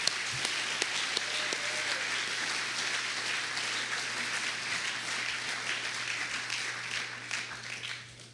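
A crowd applauds in a steady, dense wash of clapping that holds for about eight seconds before thinning out and tapering off at the end.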